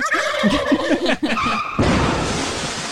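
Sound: turkey gobbling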